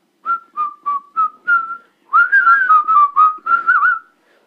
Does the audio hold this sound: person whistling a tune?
yes